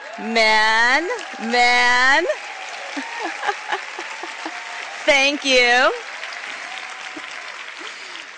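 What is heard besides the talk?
audience applause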